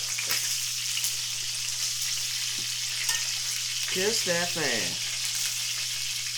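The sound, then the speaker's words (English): Chicken frying in oil gives off a steady, bright sizzle that hisses unbroken throughout, with a few soft clicks and a brief voiced murmur partway through. “We have just enough oil in here to do the rest of our sauce, okay?”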